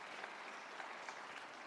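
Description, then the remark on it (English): A crowd claps steadily throughout after an announcement of free junk pickup for every household, a dense, even wash of applause with many overlapping hand claps and no voices, fairly quiet overall. “Hey, if there was ever an applause line, it was free junk pickup, right?”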